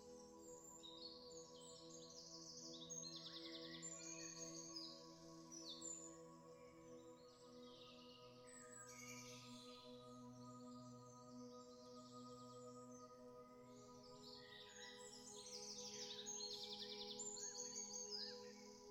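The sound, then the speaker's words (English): Many birds chirp and twitter together in a busy, overlapping chorus in a garden with trees and bushes where they nest. The chorus runs steadily throughout, with a low, constant hum underneath and no voices. “the birds have found sanctuary here and built numerous nests in the trees and bushes.”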